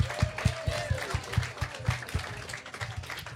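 An audience breaks into a round of applause, many hands clapping in a dense, fairly steady rhythm for a few seconds, with crowd voices mixed in underneath.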